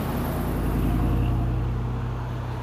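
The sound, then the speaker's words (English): A bus rumbles along the road, its heavy engine drone steady with a deep low hum, surrounded by general traffic noise and no voices. “I see another bus, y'all. Another bus going the other way.”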